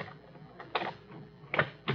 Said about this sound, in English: The door. I locked that door. He just opened it and walked out. Dudley, wait a minute. Dudley! Now it's locked again.